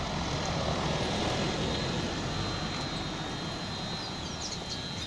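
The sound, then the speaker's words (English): A steady machinery hum from a water booster station just off a paved road in St. Augustine, with a broad rumble of passing cars, a faint high whine running throughout and a few brief bird chirps near the end. “The booster sits just off the paved road, where birdsong competes with passing cars and the hum of the booster's machinery.”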